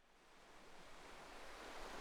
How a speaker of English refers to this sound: Lawrence Hargreaves leaned on the handlebars of his bicycle and looked at the vast Pacific Ocean in front of him. The water washed gently back and forth over the golden sand.